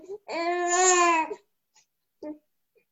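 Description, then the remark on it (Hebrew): A baby boy lets out a long, drawn-out vocal babble lasting about a second, fairly loud, followed by a short quieter sound a moment later. “לא, זה לא, איזה חמוד. הוא בדרך כלל בוכה.”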